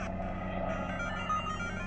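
A steady mechanical drone of a helicopter, low and rumbling with a constant hum that stays even in loudness throughout, with no voices.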